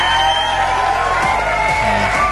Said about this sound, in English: It's Outrun 2, yes, because the game is 20 years old today, so I think that deserves an applause. Yes, don't be shy. Yeah, you can applaud, yes. You can cheer as well.